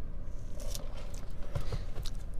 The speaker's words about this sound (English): Sorry, I need a sip of coffee. Mouth's getting dry.